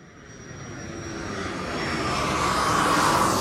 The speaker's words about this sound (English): You hear a jet plane echo its roar above your head. Looking up, you spot its trail cutting through the clouds.